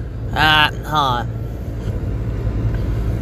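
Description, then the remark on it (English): A steady low rumble of car road noise runs throughout while riding in a vehicle in traffic, with two short, loud vocal bursts from a voice at the start. “I'm in fucking traffic and I'm fucking bored”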